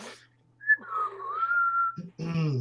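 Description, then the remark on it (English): A single long whistled note, made outside to call horses in, glides up and down for over a second, moderately loud, followed by someone starting to talk right after; a bit of voice also precedes it. “…'s just outside whistling, trying to get the horses in there, you know.”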